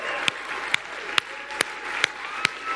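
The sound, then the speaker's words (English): A church audience claps steadily to honor the mothers standing in the room, a dense wash of applause with sharper, louder claps cutting through at an even rhythm about twice a second. No clear cheering voices stand out. “And we just want to shout and clap and honor you.”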